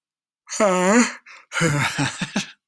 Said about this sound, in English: That's a yawn.